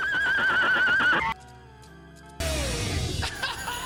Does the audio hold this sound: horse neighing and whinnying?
yes